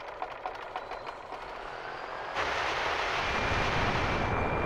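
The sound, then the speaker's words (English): A few rough, rattling pulls on the pull start of a small jetpack engine, then it suddenly catches and roars into a loud, steady drone that holds to the end. “Now all you have to do is yank the pull start.”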